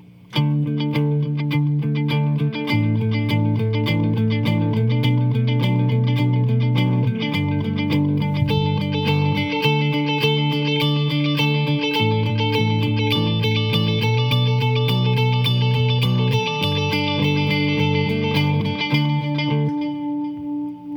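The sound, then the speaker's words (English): An electric guitar with distortion and effects sustains steady repeated D and A pedal tones while the chords beneath shift every couple of seconds through D, A, B minor and G (1-5-6-4 in the key of D), played loud and continuous with a shimmering, echoing texture. “I'll be playing these pedal tones over the progression D, A, B minor, and G.”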